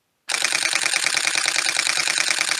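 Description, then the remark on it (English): A rapid burst of camera shutter clicks, used as a transition effect, fires in a steady, fast rhythm, loud, after a brief moment of silence, with no voices. “I'm gonna do a transition, but I want the shutter transition.”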